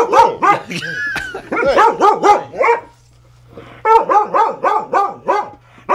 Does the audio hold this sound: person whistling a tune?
no